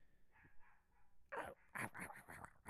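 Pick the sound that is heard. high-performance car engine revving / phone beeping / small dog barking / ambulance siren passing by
small dog barking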